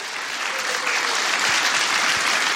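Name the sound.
audience applause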